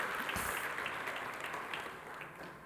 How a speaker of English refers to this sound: Let's give the Lord a great big hand clap. Hallelujah.